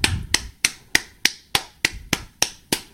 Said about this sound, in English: Final segment. I just want to clap again